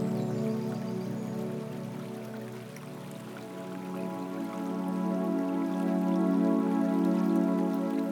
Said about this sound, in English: You hear the raindrops falling on the lake. The gentle sound of water hitting water.